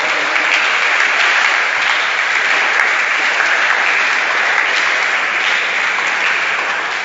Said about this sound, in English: You can clap better. Don't do it like some. Come on. Wake up and clap for the Lord.